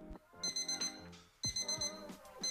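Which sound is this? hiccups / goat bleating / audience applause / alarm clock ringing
alarm clock ringing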